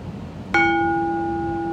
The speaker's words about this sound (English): I appreciate your enthusiasm on ringing the bell.